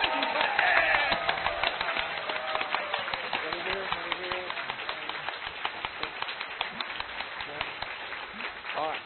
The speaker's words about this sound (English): ask you to show your support for that side via applause, otherwise known as the clapometer. Are you ready? All right. Against the proposition, let us stay small, let's not merge,